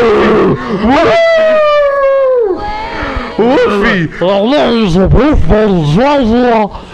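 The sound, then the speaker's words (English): At a party, a man's voice imitates a wolfman's howl, a long rising-and-falling wail followed by a string of growly, yowling howls, loud with no other sounds around it. “Wolfman! Look, when you're a wolf, I go, and then my other wolf kind comes.”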